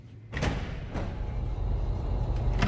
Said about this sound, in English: Where is the Pioneer audio tour taking me today? Right outside this secure door. Let's go inside.